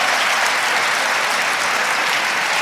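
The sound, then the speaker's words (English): A crowd applauds steadily for a couple, a dense wash of clapping hands that stays loud and even for a couple of seconds with no voices on top. “Yo, give them a round of applause, man.”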